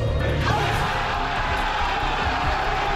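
A big crowd cheers wildly as the Texas Longhorns find out they are officially in college football's Final Four: a loud, continuous roar of shouting and whooping voices that stays steady and dense throughout, with occasional sharper yells poking through the din.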